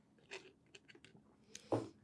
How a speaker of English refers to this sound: That you took a sip of your ice mochaccino. Literally Hitler. Meaning business. literally Hitler right here. Literally sipping Hitler. His fucking frappe.